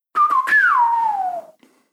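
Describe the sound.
A breathy attempt at whistling by a person who can't whistle: a couple of airy puffs, then a wavering tone that slides steadily downward for over a second before fading out, with no talking.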